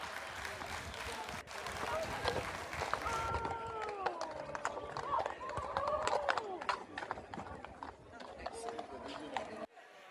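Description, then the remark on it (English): Mounted police horses' hooves clip-clop in an irregular rhythm on a hard street surface as the horses refuse to cross a pride design, with a crowd murmuring and voices talking over the steps throughout. “The horse even knows better, for goodness sakes.”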